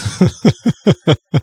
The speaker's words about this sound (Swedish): Så jag ändå koll på att jag inte har det. Att det inte är det som är anledningen till att jag hostar.